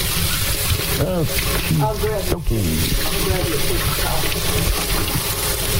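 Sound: running tap water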